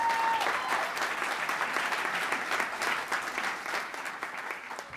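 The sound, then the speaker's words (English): An audience applauds a panel speaker introduced as interim representative for the 9th House District in the Ohio General Assembly, a dense wash of clapping that holds for about five seconds and eases slightly toward the end, with no voices on top. “She also happens to be serving the Ohio General Assembly as interim representative for the 9th House District and deserves a considerable round of applause for that.”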